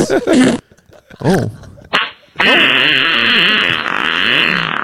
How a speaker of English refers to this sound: We're just gonna play fart noises for the rest of the podcast.